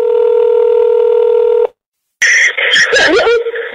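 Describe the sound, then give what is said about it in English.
A loud, steady electronic telephone tone sounds for over a second, then cuts off into a brief silence before harsh, crackling phone-line noise with warbling tones takes over, as a phone call home is placed. “On a harrowing phone call home, Amanda begged her mum to pay the ransom.”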